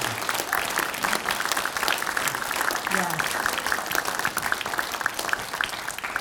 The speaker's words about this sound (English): Thank you for applauding that, too.